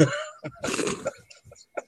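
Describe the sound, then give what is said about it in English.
A person coughs several times in quick succession, a harsh, raspy burst in the middle followed by a few smaller throat-clearing coughs, alone with no talking. “I slowly develop a cough.”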